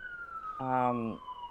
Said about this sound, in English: Can you hear that siren outside? Yeah, the cops are coming to get you for gender crimes.